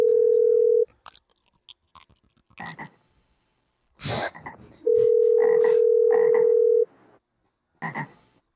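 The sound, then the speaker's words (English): Several raspy frog ribbits croak in short, uneven bursts, interleaved with a steady phone dial tone that drones on and off. No one speaks. “I turned him off. I'll start the ribbits later.”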